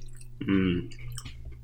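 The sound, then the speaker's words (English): A loud crunching bite of a cinnamon graham cracker sprinkled with Saigon cinnamon and topped with big organic cane sugar crystals, a short dense burst of crisp chewing, followed by quieter, softer chewing sounds. “Listen to that crunch.”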